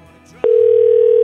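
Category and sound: signal or alarm, telephone dial tone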